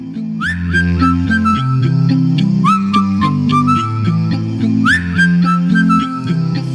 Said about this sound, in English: Can you blow that whistle?